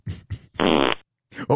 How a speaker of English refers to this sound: Someone like farted. That shit stank, bro. That was like rotten eggs and my dog shit at the same time.